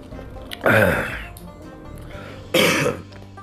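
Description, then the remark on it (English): Two harsh coughs about two seconds apart from a person whose chest is hurting, each a loud raspy burst with a throaty, phlegmy edge, separated by a quiet pause with no talking. “My chest is hurting. I'm coughing.”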